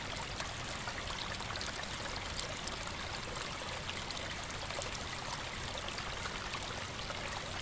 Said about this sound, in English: Unpacking your flask, you pour yourself a steaming cup of piping hot tea, made just how you like it.